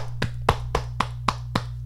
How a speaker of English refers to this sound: Round of applause, people. Round of applause.